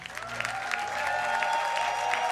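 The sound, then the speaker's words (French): An audience breaks into steady, dense applause with scattered cheers, acclaiming the Lord, a bright sustained tone running beneath the clapping throughout. “On acclame le Seigneur.”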